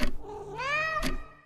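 A single cat meow, drawn out with a rising and falling pitch, fairly loud, with a short noisy burst near the start and another near the end.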